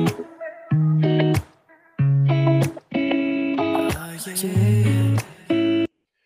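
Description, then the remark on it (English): A loud, effects-heavy guitar riff plays in choppy bursts of sustained chords, followed by a reverb-soaked vocal ad-lib with a shimmering chorus effect before it cuts off abruptly. “So you had that little bit of guitar, then you had that ad lib with the reverb and chorus in the background, and then obviously he's going to start with his full vocals there.”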